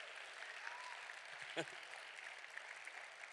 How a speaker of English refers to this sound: Oh, come on, if you believe that, clap your hands and praise him.